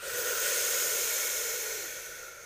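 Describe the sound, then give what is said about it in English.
A single long, airy breath through the mouth during a breathing exercise, fairly soft, swelling quickly and then slowly tapering off over a couple of seconds with no talking. “Let's start to inhale through our mouth. Exhale through our mouth. Inhale through our mouth.”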